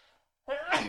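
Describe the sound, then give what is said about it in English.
A single loud sneeze bursts out after a brief pause, a sudden voiced, breathy blast that follows a faint bit of quiet sound. “I had to sneeze.”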